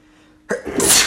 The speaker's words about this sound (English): I'm about to sneeze again. Hold on.